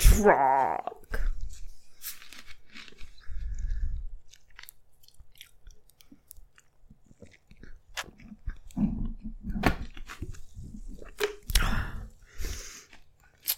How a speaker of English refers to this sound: You just burped into the microphone. Disgusting.